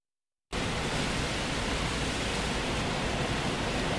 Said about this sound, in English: Strong winds and heavy rain, as you can hear there, are causing damage throughout the Upper North Island, and the weather is still getting worse. The audio was recorded in Coromandel.